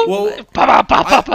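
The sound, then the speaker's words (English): Loud aggressive growling in a few rough, throaty bursts lasting about a second and a half, with no words spoken. “I think that was more of an aggressive growl than a huh.”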